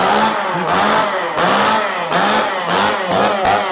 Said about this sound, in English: What, the chainsaw? Yeah, I mean, just the way it sounds, it sounds terrifying.